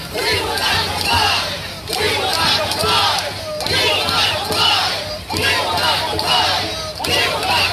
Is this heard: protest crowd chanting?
yes